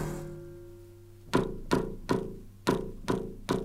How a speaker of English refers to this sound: You can hear that the kick has had its note taken off, and it now sounds like a sort of thump.